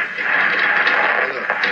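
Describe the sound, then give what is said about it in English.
A steady wash of static noise interference on a telephone call, preventing any communication: a harsh, band-limited hiss with faint crackles and fluttering, holding at an even, fairly loud level throughout with no voices. “Noise interference prevented any communication.”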